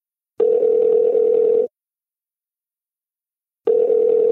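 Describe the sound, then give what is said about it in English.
A steady, low-pitched telephone dial tone sounds in two clean bursts, roughly a second long each, separated by a couple of seconds of silence. It is clear, with no voices. “We took another step in our friendship and did something which I don't do with many friends now, which is like open up the phone line.”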